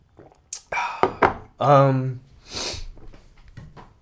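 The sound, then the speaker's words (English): A phone is shuffled away from a microphone: a few dull thunks and knocks of handling, with a short hiss and brief murmured vocal sounds between them. “Let me take my phone away from the mic.”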